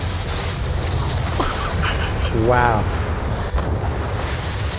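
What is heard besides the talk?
movie explosions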